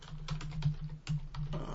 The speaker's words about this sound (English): He's typing.